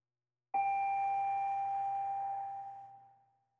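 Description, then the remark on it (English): A single bell is struck once to start a meditation session, ringing out with a clear, steady tone that slowly fades over about three seconds. Nothing else is heard, and no one speaks. “I'll ring the bell at the start and ring the bell 3 times at the end.”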